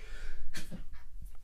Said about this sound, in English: Sneeze break. Allergies.